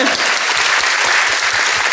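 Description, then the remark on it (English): A crowd breaks into loud, steady applause for a history teacher who has just finished training, dense clapping filling the whole moment with no voices standing out above it. “Yeah, big round of applause.”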